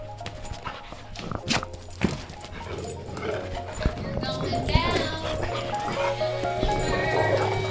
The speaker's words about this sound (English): Dog fight.